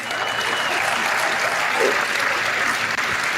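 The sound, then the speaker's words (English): A crowd applauds steadily, a dense wash of many hands clapping at an even, moderately loud level for a few seconds, with no clear voices over it. “Let's all applaud junk science and discredited research.”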